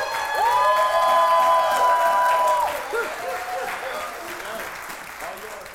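A crowd breaks into steady, dense applause welcoming a speaker, with a long high-pitched whoop riding over it early on. The clapping gradually softens and thins, joined by a few shorter cheers.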